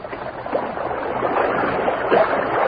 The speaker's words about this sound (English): The Lone Ranger waded into the water knee-deep, secured the bottle, and returned to Tonto's side.